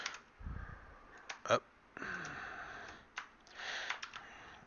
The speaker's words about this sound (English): Whoa, my keyboard's acting crazy, man. That's crazy the way that's doing that. Stop it. I'm about to do a restart.